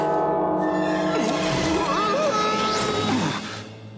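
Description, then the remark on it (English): A bell at the door of a duplex rings with a rich, sustained tone whose overtones hang in the air, loud, then gradually fade out at the end; a vocal sound drifts over it briefly. “They go up and ring the bell, and when they do, another book falls out of the sky.”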